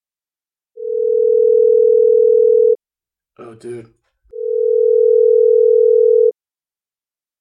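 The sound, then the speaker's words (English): A phone call rings out over speakerphone: two long, steady, loud ringback tones about two seconds each, with a brief spoken exclamation in the gap between them. “Put on the speaker. Okay. It's ringing.”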